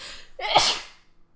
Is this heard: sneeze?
yes